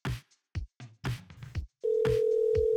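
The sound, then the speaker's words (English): A phone call being dialed to call someone back: a quick run of short keypad beeps, then a steady, unbroken telephone tone that holds to the end. Clear, with no one talking. “I'm gonna call Meth back and see if I can get him on the horn”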